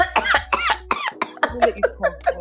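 human body sound, coughing fit

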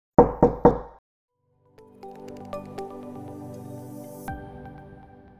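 impact, knocking on a door

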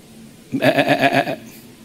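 animal, sheep bleating

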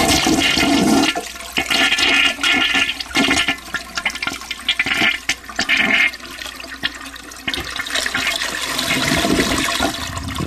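household object, toilet flush sound effect

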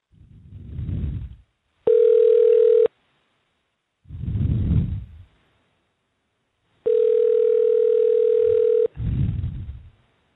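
signal or alarm, telephone dial tone

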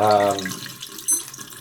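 household object, water running

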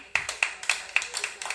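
crowd, applause

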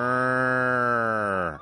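animal, cow mooing

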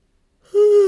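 human body sound, yawn

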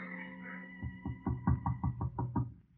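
impact, knocking on a door

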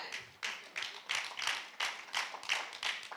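crowd, audience clapping

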